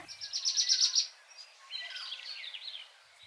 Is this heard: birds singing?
yes